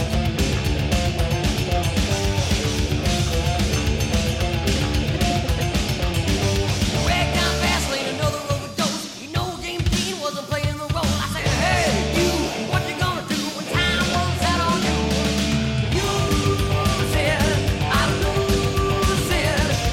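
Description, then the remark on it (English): A loud, dense rock song with pounding drums and bright, ringing cymbal bell hits; the band thins out briefly midway before crashing back in at full force. “hitting the, the bells on the single thing, on the cymbals, ding, ding, ding, ding.”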